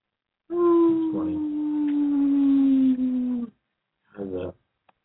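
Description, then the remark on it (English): A dog lets out one long, drawn-out howl that slowly sinks in pitch over about three seconds, then a short second howl after a pause; fairly loud, with no talking. “I'm saying good boy to the howling because anytime he hears like police sirens, he howls.”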